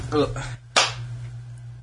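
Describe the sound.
One sharp, loud, sarcastic hand clap rings out in a studio after a brief bit of talk, then fades into a steady low hum with nothing else following.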